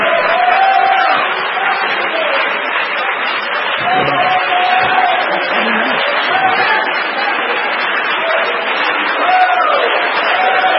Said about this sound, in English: You've got to have the Holy Ghost. Why don't we just stand and clap our hands and praise Him right now? He's worthy.